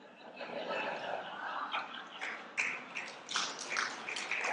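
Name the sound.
hand clapping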